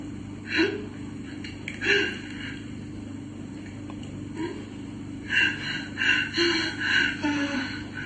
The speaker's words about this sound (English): Oh, that's a very tricky one because we're not getting any screams or groans. It's just like heavy breathing, isn't it? It could be someone hiding in a closet.